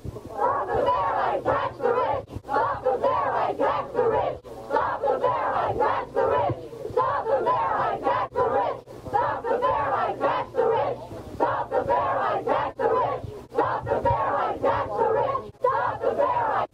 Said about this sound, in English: But a group of young people, members of Students for a Democratic Society, would not let the MBTA's board of directors announce the rise in fares without a struggle. Their shouts drowned out the vote of approval.